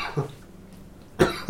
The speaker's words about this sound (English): That was a fake cough. Yeah, I know. I had a cough there, and then I got over it. I was like, well, I've already committed to the motion.